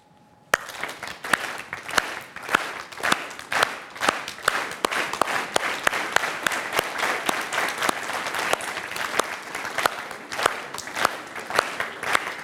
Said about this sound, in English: You're going to clap. I'm going to clap. Those are the rules. And you're going to start when I say start, and you're going to keep clapping until I say stop.